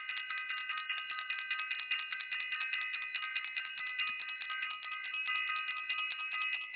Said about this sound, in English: I want to ring the bell for self-invested and for everyone who was in class in self-invested.